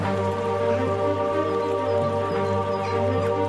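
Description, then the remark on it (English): Steady running water pours continuously from a tap in a monastery cloister, fed by the monastery's water supply, a constant splashing flow with a low hum beneath it and no voices. “And in fact, when you go into the cloister, water comes out there in taps like this.”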